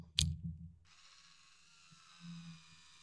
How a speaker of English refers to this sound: And it's called Fernancho Rose. I hope I didn't botch the name. And it was made in 2018 and is a Spain wine. I love rose wine anyway, so I know this wine is going to be amazing. Let's crack it open.